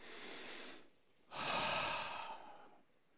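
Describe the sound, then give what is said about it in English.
A crowd takes a deep breath together: a long, airy inhale, a brief pause, then a fuller, rushing exhale that slowly fades out. No one speaks. “So let's all take a deep breath.”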